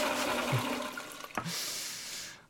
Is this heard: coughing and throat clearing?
no